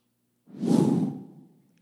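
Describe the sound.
A single forceful breath blown out into the microphone, a broad rushing whoosh that swells quickly and fades over about a second, fairly loud, with no talking.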